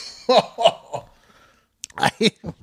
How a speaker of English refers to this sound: I laughed while taking a sip of bourbon and shit went right up my nose.